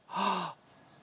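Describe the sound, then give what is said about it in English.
A single dramatic gasp of shock, a sharp, breathy intake of air lasting about half a second, fairly loud, performed by a voice and followed by quiet room tone. “They would have gasped.”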